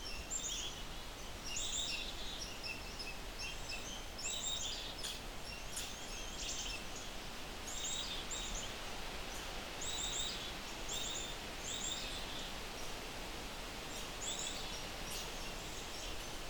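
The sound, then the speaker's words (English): An angry red squirrel chatters in repeated rapid, high-pitched bursts throughout, over a steady hiss of outdoor background noise with no voices. “I also see an oven bird in front of me. Not saying much though. Not with this red squirrel.”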